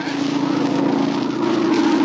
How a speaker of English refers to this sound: It's a plane, all right. Must be going to land near here. It sounded mighty low, just above the trees.